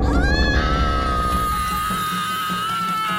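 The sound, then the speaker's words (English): A young girl screams in a long, shrill, piercing wail that stays loud for about three seconds, with no talking over it. “I just watched the kid scream so hard she melted into goo.”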